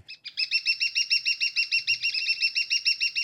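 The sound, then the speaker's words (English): A woodpecker calls in a fast, even series of sharp, high-pitched notes, about six per second, loud with no other sounds around it. “It was a woodpecker.”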